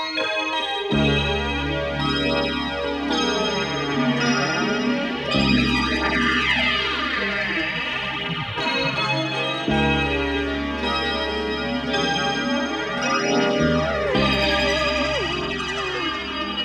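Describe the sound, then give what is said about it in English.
The opening of a song: a dense, swirling wash of synthesizers and keyboards with a flanged gong sweeping through it, steady and loud throughout, with a heavy bass note that drops out and returns every few seconds. “The song opens with a wash of synthesizers and keyboards and a gong with a flanging effect on it.”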